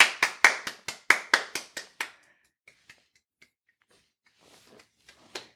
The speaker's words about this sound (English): Everyone in the restaurant is clapping for you.